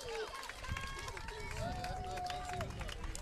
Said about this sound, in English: Listen to this crowd back here behind us.